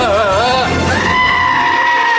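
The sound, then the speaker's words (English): A goat bleats loudly during a goat yoga session, a wavering, quavering cry that shifts into a long, sustained nasal call lasting about two seconds, with no other sounds around it. “This is actually a recording of goat yoga.”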